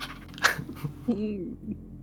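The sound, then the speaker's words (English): A person imitates a dog's chops slapping: a sharp breathy puff followed by a brief, wobbly voiced flapping sound, short and fairly quiet. “Maybe kind of does that like chop slapping that.”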